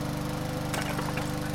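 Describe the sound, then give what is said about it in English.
A lawn mower engine drones steadily with a low, buzzing hum, broken by a couple of brief crunching clatters as the blades run over flower pots holding flowers, including a rose. “Maybe you should get off the lawnmower.”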